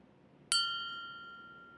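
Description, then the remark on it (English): A small, heavy bell is lifted in both paws by Wallace and rung once with a full-body wiggle, giving a bright, high ding that rings on with a slowly fading shimmer. No one speaks, and only a faint hiss sits underneath. “And Wallace lifts the bell with both his paws, because it's a heavy thing for him, and he full body wiggles to ring it.”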